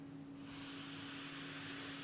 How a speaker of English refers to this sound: He's tooting. He's breathing out. There's vapor come out. It was cloudy.